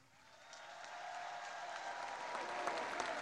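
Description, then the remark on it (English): A crowd breaks into applause for Poland during a speech on NATO defense investment, swelling over a few seconds into a steady, dense clatter of many hands clapping, with no voices over it. “I must tell you, the example you set is truly magnificent, and we applaud Poland.”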